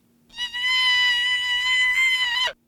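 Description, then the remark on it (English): A single sustained, high-pitched deer cry, raised by software from about 170 hertz to an average of about 900 hertz without changing its other acoustic traits, lasting about two seconds with a steady, buzzy, harmonic-rich tone that cuts off abruptly; no talking. “We're able to use software to increase the frequency of the pitch without changing any other acoustic traits in the call.”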